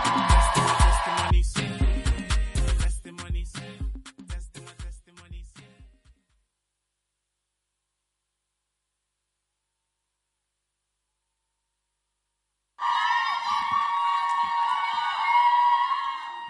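A crowd claps and cheers loudly, with dense clapping that thins out and fades. After a stretch of silence, a burst of crowd cheering and whooping starts again and stays loud.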